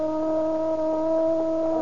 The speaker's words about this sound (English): What's that? The prison siren